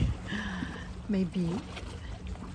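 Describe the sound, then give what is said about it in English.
Steady rushing water from waves fills the background as a continuous wash of noise, recorded on a cell phone, while a voice close to the phone briefly speaks over it. “Maybe the water, the wave sound is much more powerful than my sound.”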